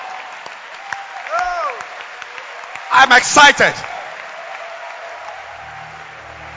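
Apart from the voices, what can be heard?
audience applauding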